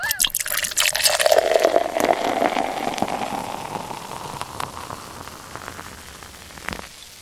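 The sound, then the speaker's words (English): A raspberry imperial stout is poured into a glass, a steady splashing, fizzing stream that starts with a glassy clink and gradually softens and thins out over several seconds. “That poured as good as it sounded to only the listeners.”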